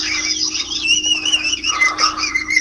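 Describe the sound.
A person whistles into a phone: a shrill, wavering, bird-like tone that warbles continuously for a few seconds over a steady low hum, with no talking.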